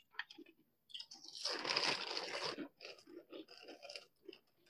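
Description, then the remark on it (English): Loud, crisp crunching of a popcorn snack being chewed, a dense burst of crackly bites in the middle followed by several shorter, softer chews. “I don't know that I would pour milk on this one, though, because that would make the popcorn weird.”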